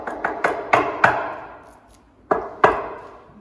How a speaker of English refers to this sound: And they're knocking on the door quite hard.